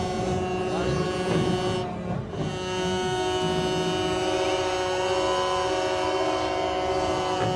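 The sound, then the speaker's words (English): Several vehicle horns blare together in a long, steady chorus of overlapping tones, loud and nearly continuous, with one brief dip before they swell back up over a rumbling background. “Honk, honk, baby. Honk, honk.”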